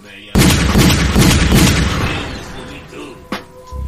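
A loud gunshot sound effect bursts out suddenly, followed by a booming, rumbling tail that fades over about two seconds, then a smaller sharp crack near the end.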